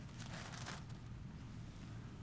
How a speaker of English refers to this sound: It's in the console between the two front seats. This bag is full of quarters. I don't know how many. Every time I get a quarter, except for that one, it goes in this bag. It travels with me.